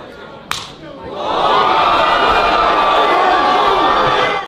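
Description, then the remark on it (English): One sharp, cracking open-hand slap lands, and a second later a crowd erupts into loud, sustained cheering and shouting that drowns out everything else to the end. “You know what would have got rid of this cold for you in a super hurry? Huh. A smack like this.”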